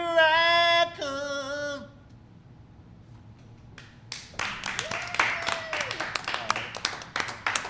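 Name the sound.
audience clapping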